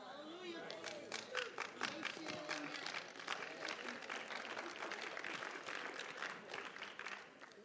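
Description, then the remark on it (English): A crowd applauds steadily, many hands clapping in a dense, even patter that holds at a fairly constant level, with some murmured voices and chatter mixed underneath. “If you're going to golf, if you're going to clap, it can't be a golf clap.”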